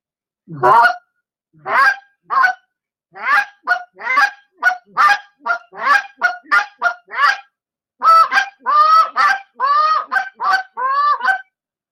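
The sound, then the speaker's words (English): A person blows a goose call imitating Canada goose honks in a Minnesota honker sequence, the hiccup, a long loud series of sharp, nasal honks in quick bursts, some clucking, others rising into drawn-out two-note honks, with no talking. “Give us a little give us a little Minnesota honker sequence.”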